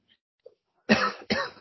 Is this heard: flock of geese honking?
no